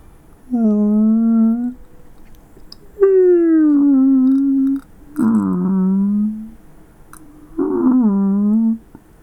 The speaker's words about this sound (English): These whales, these peace-loving symbols of joy and delight and cooperation, lent their expertise and massive brains to the effort. Here are some soft whale sounds.